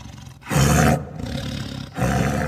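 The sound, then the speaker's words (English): A tiger growls in a room in deep, rough roars that echo off the walls: one loud surge, then a steadier rumbling stretch and another strong swell, each with a low, throaty tone. No one speaks. “The growling increased, echoing off the walls, making the sound all the more menacing.”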